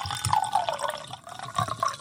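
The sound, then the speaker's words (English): Whiskey pours steadily into a glass, a gurgling trickle with a rising, bubbly tone, briefly pausing and then continuing. “There's pouring that.”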